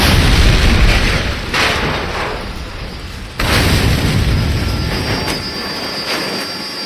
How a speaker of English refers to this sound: There was an explosion at the mill. What was it? One of the machines? No. It was a truck. One of the tractor trailers.